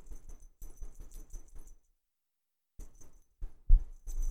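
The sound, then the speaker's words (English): A cat scratches at her collar inside an RV, the metal tags jingling in quick, rhythmic bursts, then a short pause before the jangling and soft scratching resume, louder toward the end. No one speaks. “You can hear her scratching her collar.”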